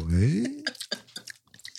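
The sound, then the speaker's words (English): A short voiced hum gives way to a run of crisp, irregular crunching bursts from chewing, each bite sharp and brief. “Are you eating potato chips?”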